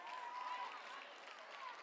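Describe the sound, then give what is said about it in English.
A crowd claps and cheers in a steady, dense wash of applause, with a few whoops rising above it, sustained for under two seconds with no speech. “You're cheering, but you stress out about those moments.”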